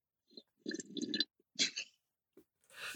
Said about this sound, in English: Either a pumpkin latte or a lavender latte, because I'm like that. And I love it. And thank you. I'm going to make a sip noise.